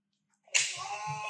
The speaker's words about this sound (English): Damn, you hear that? I wish I could have seen it. That doesn't sound like a regular wrestling chop. No, he slapped the shit out of it.